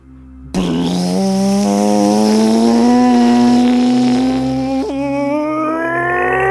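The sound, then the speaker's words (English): A seaplane engine kicks in abruptly and drones loudly and steadily, its buzzing pitch climbing slowly as it revs for several seconds, with no voices. “A seaplane.”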